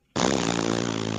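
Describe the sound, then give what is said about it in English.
A voice imitates a balloon letting its air out: a sudden, loud, buzzy sputter that holds a steady low pitch for about a second, with no other talk. “Don't all balloons make that sound when you like let the air out a certain way?”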